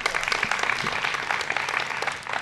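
An audience claps together, a steady, dense wash of many hands that fills the whole clip at an even level with no voices standing out.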